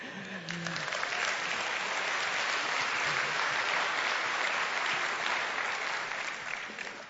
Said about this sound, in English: And you know, the applause has got to go to God, right? I mean, it's got to be like, thank you, Lord, that you're worthy of that.